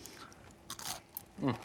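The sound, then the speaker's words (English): A crisp crunch as someone bites into a fried onion ring, a quick burst of crackly chewing noise followed by a brief murmured vocal sound. “Great crunch, not oily.”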